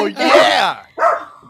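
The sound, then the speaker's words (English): A dog gives two loud barks: a long, drawn-out first one, then a shorter second after a brief pause. “That dog knows what's up.”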